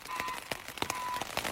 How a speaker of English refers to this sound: And just like that, something else I can't control, it starts to pour rain.